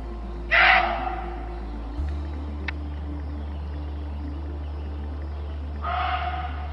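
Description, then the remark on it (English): A muntjac deer gives two harsh, screaming barks spaced about five seconds apart, the first louder, over a low steady background rumble with no voices. “the screaming in the forest is a creepy detail of the story. But it was probably a deer. Oi, deer scream? Muntjac deer do.”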